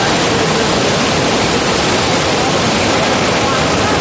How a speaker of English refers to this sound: That is the River Jordan at a time of flooding. It's not quite sort of gone over the banks fully in this particular stretch. But you can see the force of that river. It's not something that I would certainly attempt to cross.